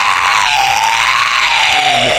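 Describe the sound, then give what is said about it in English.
A voice lets out a loud, sustained, raspy scream imitating a drake's triumphant shriek, steady and strained for about two seconds with a slight rise and fall in pitch. “and then like rises up onto her like back legs, claws in the air, going like.”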